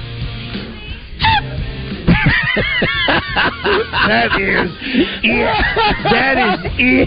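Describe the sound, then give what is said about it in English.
On the Morning Mayhem radio show, a voice imitates a smoke alarm's low-battery chirp with a string of short, squeaky, honk-like vocal bursts, loud, with other voices chattering and laughing around it. “The batteries are bad. It's time to change me. Smoke alarm chirp.”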